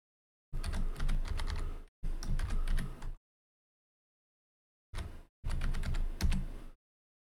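Rapid clicking of keys on a computer keyboard, fairly loud, coming in four bursts separated by short pauses, with no voices.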